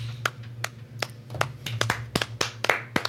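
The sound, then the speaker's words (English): A short burst of about a dozen sharp hand claps from a single person, starting slow and quickening toward the end, over a low steady hum with no one talking. “That's a clap for us.”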